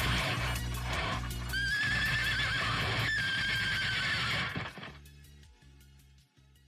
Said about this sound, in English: Folks, for now, I'm going to leave you all with the sound of a horse being fed through a distortion pedal.